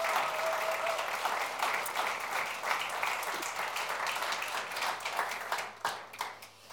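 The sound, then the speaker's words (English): A room full of people claps steadily for several seconds, a dense, even patter of many hands that stays strong throughout before thinning slightly near the end. “So can we give them a round of applause?”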